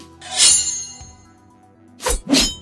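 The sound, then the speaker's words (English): A sharp metallic clang rings out and slowly fades, followed a moment later by two quick, forceful slashes in close succession as the character E-77 attacks a horde of ninjas with two blades from his wrists, loud, with no voices. “E-77 unleashes two deadly blades from his wrists and begins to impale, dismember, and decapitate his targets.”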